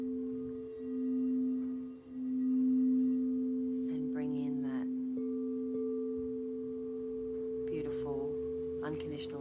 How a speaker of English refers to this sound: Apologies if you can hear my rubbish truck, the dulcet tones of my rubbish truck.